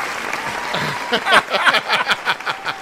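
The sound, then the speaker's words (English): A burst of applause sound effect from a small crowd, dense overlapping claps building quickly and continuing steadily at moderate loudness for a few seconds, played as a clap line to praise a sous chef's cooking. “Don't you have a clap line or something you can use on him?”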